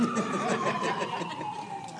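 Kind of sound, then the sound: vehicle, ambulance siren passing by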